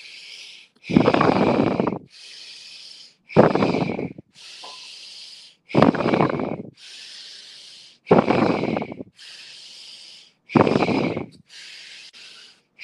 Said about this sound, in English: Again, your left hand is closing off the left nostril, so we're isolating, just breathing on our right nostril only, in and out.